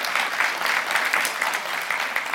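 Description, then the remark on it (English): A crowd at a morning church service claps steadily, producing a dense, even wash of applause that holds at a fairly loud level throughout, with no voices standing out. “And that deserves an applause as well.”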